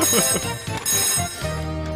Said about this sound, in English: Oh, hey, someone's calling on the picture phone.